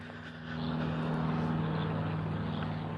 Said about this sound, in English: There's an airplane flying.